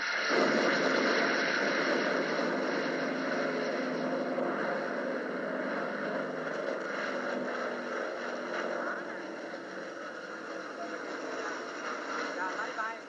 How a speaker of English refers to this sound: Planes again. Are they American or Vietnamese? I don't know whose they are. Just airplanes.